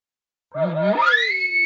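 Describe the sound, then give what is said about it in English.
A bull's sharp roundup call, urgently gathering his cows when he senses a threat: one quick, loud tonal blast that starts low and raspy, sweeps rapidly upward and holds as a high whistle after a moment of silence. “He gives that sharp little blast real quick because the urgency demand is fast.”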